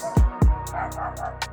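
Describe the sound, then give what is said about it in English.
Household dogs bark at each other: two sharp barks in quick succession, loud, followed by a low continuing yap and whimpering tone that trails off with a final bark-like burst. “All of our dogs are being annoying right now.”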